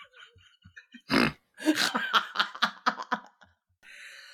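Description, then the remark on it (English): A person vocally imitates a reverse fart with one short, rough sucking burst, then breaks into a run of choppy laughter that fades near the end. “It's a reverse fart.”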